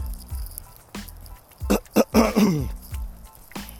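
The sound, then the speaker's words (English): A person who is getting sick clears their throat, a short cluster of rough, gravelly rasps lasting about a second, with quieter breathy noises before and after. “See, I gotta clear my throat because I'm getting sick out here.”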